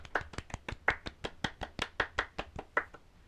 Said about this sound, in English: Like, so, yes, let's have a clap for Lewis Hamilton.